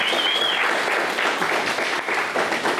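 A crowd applauds steadily for about three seconds, a dense, even wash of many hands clapping at full volume with no voices rising above it.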